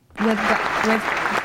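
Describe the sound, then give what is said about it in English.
A crowd applauds in a dense, steady wash of clapping that starts abruptly and stays loud throughout, with a couple of brief voiced cheers or calls rising above it. “Just a moment of the applause always gets to me”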